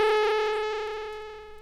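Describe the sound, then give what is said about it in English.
A bright, buzzy tone from a voltage-controlled synthesizer oscillator, its pitch modulated by random white noise, holds a steady mid pitch with a slight irregular wobble, its rich harmonics sounding alone and slowly fading over under two seconds. “Random white noise can be used to create random variations.”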